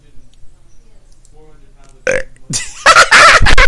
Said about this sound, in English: I went silent, I burped, and I laughed at my burp.